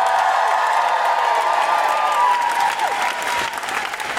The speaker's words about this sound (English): Just give us a cheer if you're a supporter of Amnesty International.